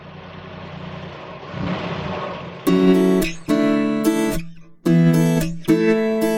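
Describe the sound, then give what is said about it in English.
A car engine rumbles at a low idle, then revs hard in three or four loud, rising bursts as it pulls away, prominent with no one talking. “Well, let's jump in our mayor's car and go off to Left Field Farm.”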